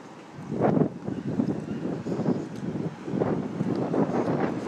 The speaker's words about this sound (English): It's been really crazy. It's been incredibly windy out here. Incredibly windy. I don't know if you could hear any of that windy stuff. I took off my windscreen, as some of you know.